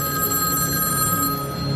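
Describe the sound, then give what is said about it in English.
A telephone bell rings steadily and loudly, its bright metallic tone sustained throughout with no pauses and no one speaking. “I have to answer that phone.”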